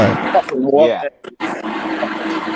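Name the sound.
blender running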